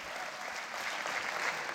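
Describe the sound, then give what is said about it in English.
A live audience at New York's 92nd Street Y applauds steadily on June 6, 2019, a dense, even wash of many hands clapping that stays at a constant loudness throughout, with no voices standing out. “The conversation was recorded on June 6, 2019, in front of a live audience at New York's 92nd Street Y.”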